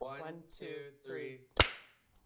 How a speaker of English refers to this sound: Do it together. That's what we're gonna do. Okay. Are you ready? What are we doing? The one. One, two, three, clap.